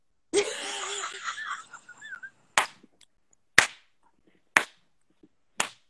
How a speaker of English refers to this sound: Oh, she got slow clapped, it seems.